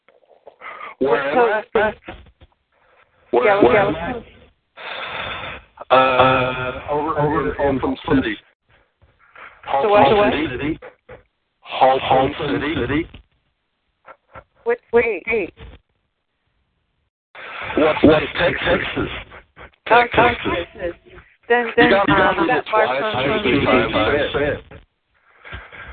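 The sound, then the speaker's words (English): A voice over a narrow, tinny phone line speaks in short bursts separated by gaps, the words smeared and doubled by a lingering echo that makes them hard to follow. “It's echoing so bad.”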